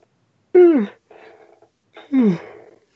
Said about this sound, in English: Sorry, I'm yawning really bad.